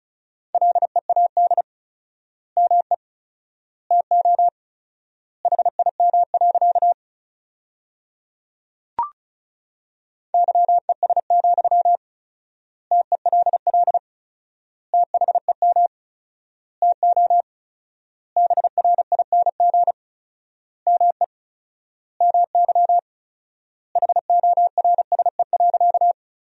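Fast Morse code at 35 words per minute, sending sentences built from the 500 most common words with four-times word spacing, in a single steady mid-pitched tone: rapid beeps clustered into short bursts separated by long silent gaps, with no voices.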